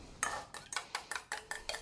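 Dry ingredients being tipped into a mixing bowl holding mixed eggs and vanilla, heard as about seven quick, evenly spaced rustling, scraping bursts with a crisp, bright texture. No one speaks.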